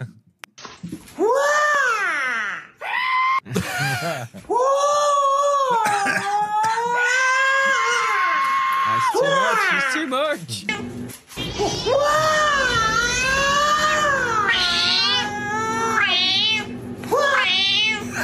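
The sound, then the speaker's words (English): A cat yowls and caterwauls loudly, a string of long, wavering meows rising and falling in pitch, nearly continuous with only brief pauses between cries. “Is that the Scouse cat?”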